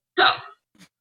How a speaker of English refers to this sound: You think she's drunk in that video? No. Yeah. Is that her mom's hiccup?